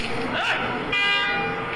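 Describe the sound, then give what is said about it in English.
A single loud car horn honk blares and holds steadily to the end, following a brief vocal shout moments before. “Bite, yell, honk.”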